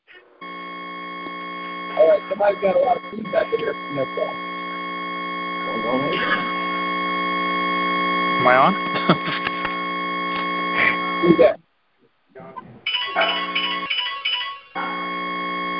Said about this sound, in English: somebody's got a lot of feedback in their phone.